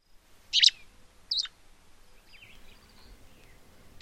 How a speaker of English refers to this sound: And last, but not least, is the least flycatcher.